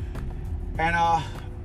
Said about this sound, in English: I'm pulling up on my spot, about to hop out my car.